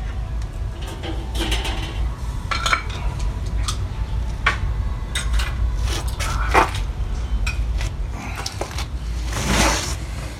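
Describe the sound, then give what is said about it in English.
A knife cuts a piece off a steak on a plate, sawing and scraping in short, irregular clicks and scratches over a steady low hum, with one longer, louder scrape near the end. “I bit off, I cut off a piece.”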